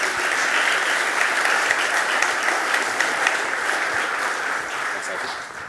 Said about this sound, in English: I think they deserve a little ripple of applause at least.